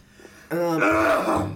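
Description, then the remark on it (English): After a brief quiet moment, someone lets out a loud, raspy cough, a single rough burst that lasts about a second before trailing off. “Me yeah, coughing it's really.”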